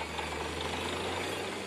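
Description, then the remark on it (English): Steady, dense machine noise with a low engine hum and a continuous rough grinding rattle, loud, from a drilling rig boring through the soil to reach groundwater during a drought in Telangana, running without pause. “It's a drilling rig boring through the soil to get at groundwater.”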